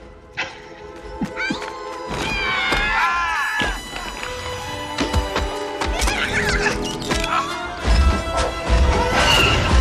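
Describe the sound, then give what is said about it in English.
Heavy logs crash and thud into a walker's face amid creaking, groaning wood and mechanical whines, a loud, dense film special-effects impact sequence with several sharp hits and no talking. “I like the logs smashing it in the face.”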